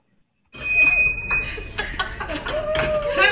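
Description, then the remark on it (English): A bright hand bell, rung by a woman celebrating beating cancer, rings out with a lingering metallic tone, struck again amid a lively crowd of voices, laughter and cheering. “Let's take a look at her ringing the bell in honor of her beating cancer.”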